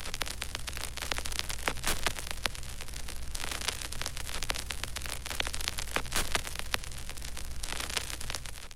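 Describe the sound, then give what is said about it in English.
Steady vinyl record static with dense, irregular crackles and pops over a soft hiss, continuous and fairly quiet, with occasional brighter sweeping bursts of noise. “I've used vinyl static quite a bit in some of my productions, and I find that it actually makes the song a little more easy on the ear to have a layer of vinyl static running through it for some reason.”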